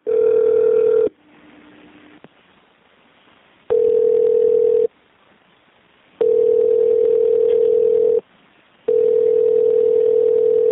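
telephone dial tone

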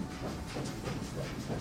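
train rolling on tracks

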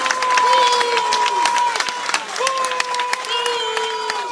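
crowd booing

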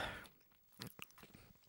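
chewing a jelly bean

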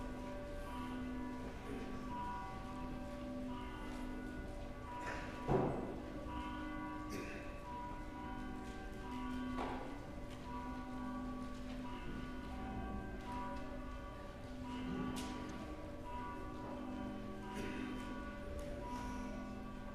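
church bells ringing

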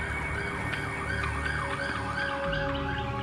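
emergency vehicle siren

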